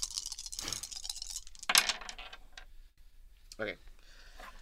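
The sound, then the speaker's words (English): Dice rattle in a cupped hand, then clatter across a hard table in a quick burst of sharp clicks, fairly quiet, with faint voices. The dice are rolled for a mechanical skill check to pick a lock in a game, totalling 7. “I got dice in my hand, so.”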